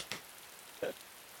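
nature, rain falling

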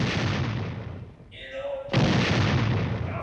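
sound effect, distant explosion

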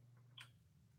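household object, typing on a keyboard

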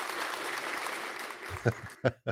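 sound effect, applause sound effect

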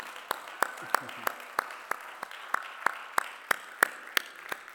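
crowd, audience applause

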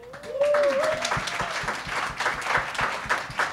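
crowd, audience round of applause

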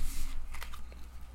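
household object, shuffling tarot cards

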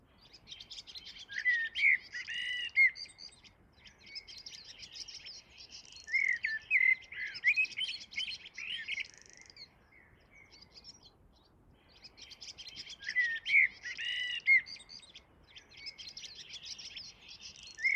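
bird, blackbird singing

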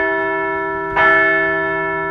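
signal or alarm, bell ringing

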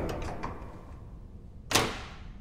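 household object, door slowly opening

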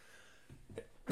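human body sound, sneeze

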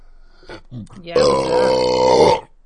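human body sound, burp

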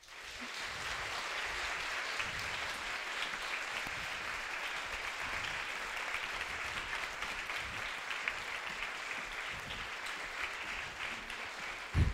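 crowd, audience applause

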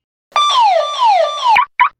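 signal or alarm, house alarm going off

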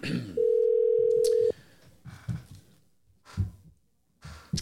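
signal or alarm, telephone dial tone

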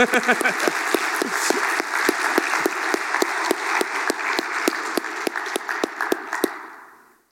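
crowd, audience applauding

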